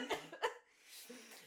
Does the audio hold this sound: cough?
yes